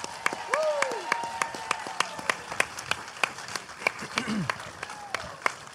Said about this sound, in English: We are going to bring out our guest, a Vancouver local. Please give a huge, huge round of applause